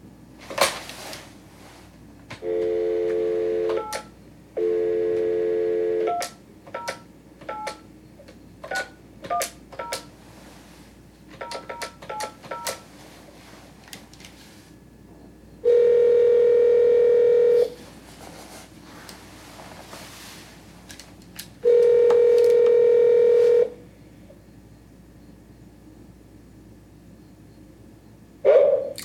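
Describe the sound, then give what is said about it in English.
Phone keypad beeps and short tone bursts, then two long, steady ringback tones a few seconds apart as an outgoing call rings from a hotel, clear with no one talking. “And so we go back to the hotel and sit down and I give him a call.”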